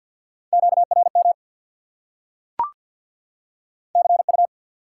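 Rapid Morse code beeps at 50 words per minute, sending common amateur radio contact (QSO) elements, in a steady mid-pitched tone, sounded in two short bursts of quick dits and dahs separated by silence, with a single sharp click between them.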